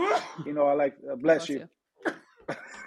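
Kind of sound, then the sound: human body sound, sneeze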